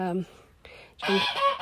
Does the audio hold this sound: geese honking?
yes